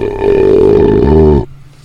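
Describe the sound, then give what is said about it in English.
A loud, drawn-out belch, made while tasting and rating beers, lasting over a second, rough and croaky with a deep rumbling tone that drops lower just before it cuts off abruptly. “tasting these beers and rating them using our Suds ratings and signature belching sounds.”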